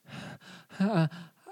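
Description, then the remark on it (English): A voice imitates heavy breathing, four or five loud, huffing breaths in a steady rhythm, one stretched into a voiced groan-like exhale midway. “And he's just breathing heavy.”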